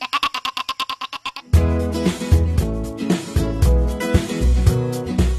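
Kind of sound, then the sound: animal, goat bleating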